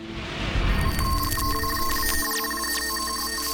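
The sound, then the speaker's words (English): An electronic telephone ringtone plays for an incoming phone call, steady bright tones with quick rising chirps repeating over a low background rumble. It is fairly loud, with no voices. “Probably a couple of years before I retired, 3 or 4 years, I get a phone call from an agent that I respect very much.”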